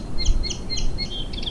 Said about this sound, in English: But sometimes one can hear something unexpected in an urban soundscape, such as this song sparrow.